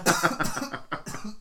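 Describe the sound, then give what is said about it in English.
A fairly loud fit of coughing: about half a dozen harsh coughs in rapid succession with a brief gasp midway, and no talking. “I need to cough.”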